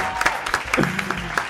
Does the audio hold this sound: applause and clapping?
yes